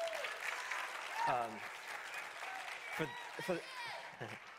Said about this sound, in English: Can you guys just give it a round of applause for all the work that they did with that yesterday?